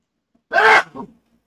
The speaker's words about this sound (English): Hold on, I gotta sneeze.